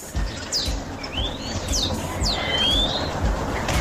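Several birds whistle and chirp, with sweeping rising and falling calls overlapping against a steady outdoor background hum, fairly close and clear, with no one talking.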